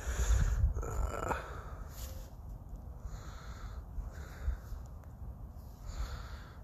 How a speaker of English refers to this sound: There's this very loud bird screeching around, and I'm not sure why.